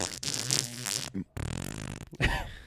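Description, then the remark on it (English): A wet, sputtering fart sound made with the mouth, a voice imitating it in two or three loud, buzzing bursts, with no talk over it. “Dude, that is a juicy fart.”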